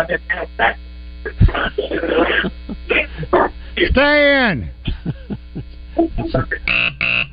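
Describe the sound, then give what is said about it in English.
Muffled telephone-line speech with a delayed echo from the caller's own radio playing the call back, over a steady low electrical hum. Several voices talk throughout, one calling out loudly. “Are you in an echo chamber or what?”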